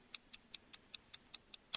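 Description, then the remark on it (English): A countdown timer clock ticks steadily through a 10-second countdown, about five crisp, evenly spaced ticks per second, bright, with no voices over it. “10 seconds on the clock, my friend.”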